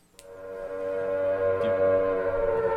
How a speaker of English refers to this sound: Shannon, do you hear some sirens?